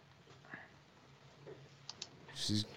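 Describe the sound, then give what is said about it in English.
Faint, scattered clicks of a woman typing on a computer keyboard into Skype, a few irregular keystrokes spread out over a quiet background, ending with a slightly louder, fuller clatter. “And now she's typing into the thing to Skype so she can hear me.”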